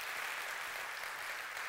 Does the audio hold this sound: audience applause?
yes